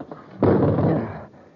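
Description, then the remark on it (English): A metal chair smashes against a small window made of electroplast, swung in an attempt to break through it, in one sudden, loud crash, followed by a harsh, rattling roar that holds for about a second before fading. No one speaks. “It isn't very big, but I think if we smashed it, we could get through. Yeah, this metal chair ought to do the trick.”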